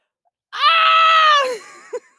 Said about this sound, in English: screaming on the mic. It's kind of like just she's going for the louder, not faster approach.